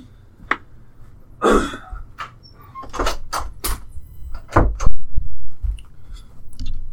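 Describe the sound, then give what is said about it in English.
A bathroom door leading to the laundry room being shut, with a handful of sharp clunks and rattling knocks spread over several seconds, with no one speaking. “My bathroom door is open, and it leads to the laundry room.”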